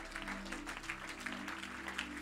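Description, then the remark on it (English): Many people clap their hands together unto the Lord, a dense, steady patter of many hands that continues without pause, with a low sustained hum beneath it. “Why don't you just clap your hands unto the Lord one more time.”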